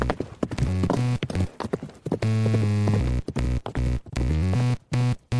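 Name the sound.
horse hooves clip-clopping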